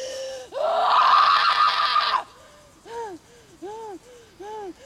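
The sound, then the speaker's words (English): A woman lets out one loud, raw, furious scream lasting nearly two seconds, then trails into a few shorter, quieter wavering cries, heard alone with no talking. “There are a few things informing these screams that I think are worth thinking about, namely, how Grace is rejecting many of the power structures that surround her.”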